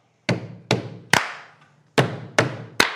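Two rounds of a stomp-stomp-clap rhythm: a pair of thudding stomps followed by a sharper hand clap, repeated after a short pause, close and fairly loud with no talking.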